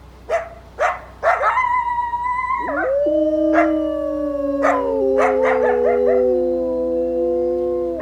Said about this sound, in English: Give this a listen. The higher pitched yipping and barking with the drawn out yip yip yip howl is the coyotes. The long drawn out howl is our two wolves harmonizing with each other.